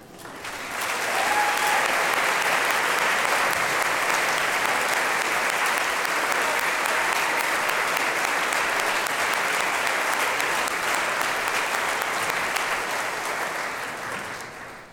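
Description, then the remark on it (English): Sustained applause from a large audience welcoming returning sophomores and juniors at Goshen, rising quickly and holding steady for over ten seconds with dense, crackling hand claps before tapering slightly at the end. “We'll have you for a few more years and you'll get a few more rounds of applause, but please stand now and be welcomed.”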